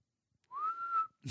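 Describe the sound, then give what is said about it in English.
A person whistles a single steady, slightly rising note for about half a second, clear, followed by a brief burst of noise at the end. “Why did I have to prove I could whistle to you just then?”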